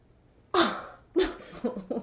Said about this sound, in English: Okay. This nigga sneezing and shit. You got corona this?